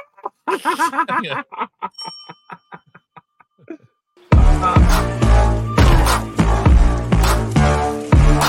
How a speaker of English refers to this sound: I have your bell, and I'm about to give it to you here. Well, let's ding this thing.